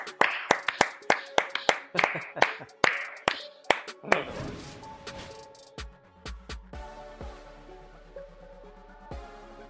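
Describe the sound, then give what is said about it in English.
A quick burst of sharp hand claps, about a dozen in rapid rhythm over the first few seconds, then fading into a brief musical jingle with tonal notes. “Clap it up.”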